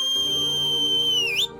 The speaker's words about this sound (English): Then the killer pointed straight at him and whistled.